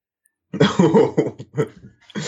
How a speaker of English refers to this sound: It sounded like a dry cough to me. No, that's something else.